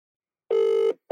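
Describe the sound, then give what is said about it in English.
An outgoing phone ringback tone: a steady electronic tone lasting about half a second, then a brief gap before the next ring begins. Clear, with no voices. “Can you hear that ring?”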